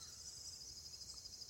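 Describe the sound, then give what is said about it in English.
A steady, high-pitched chorus of crickets trilling continuously outdoors at night, soft, with a faint low rumble underneath and no voices. “except for those crows, some crickets and stuff around.”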